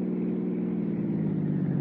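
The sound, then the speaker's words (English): A car engine drones steadily as the vehicle drives out through Westwood and Santa Monica, then north along the coast highway, a continuous mid-pitched hum with a faint rise as it accelerates, with no voices. “Oh, we cut out through Westwood, then Santa Monica, then hit the coast highway and headed north.”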